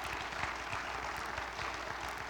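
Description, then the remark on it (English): A church audience applauds steadily during a morning sermon on the resurrection of Jesus, many hands clapping at once in a dense, continuous patter at an even loudness with no voices over it. “Christianity, go ahead and clap there, that's good.”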